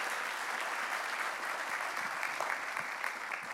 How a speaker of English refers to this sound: Would you give them a great big hand clap and welcome them to Abundant Life Church. God bless you as you come.